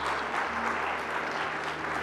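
A crowd applauds steadily, a dense wash of many hands clapping at an even, fairly loud level for a couple of seconds with no voices standing out.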